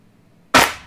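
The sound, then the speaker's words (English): A single sharp, bright hit of a snare drum layered with a clap sample, cracking loudly and then decaying quickly, with no voices around it. “There's a slight, a very minute difference between the snare and the clap on this track.”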